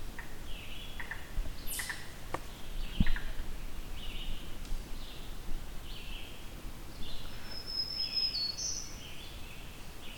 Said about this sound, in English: This isn't too far from the entrance where I heard a blue-wing warbler. Oh, it's a second black-throated green warbler.